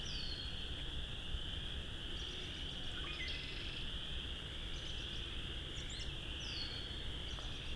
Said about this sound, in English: Might have been a wood duck calling. Flying away.